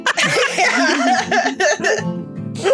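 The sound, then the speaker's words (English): A person gives a few throaty, voiced coughs in quick succession, one sharp hack after another, fairly loud with no other sounds around them. “Vasa coughs and nudges Ertlby.”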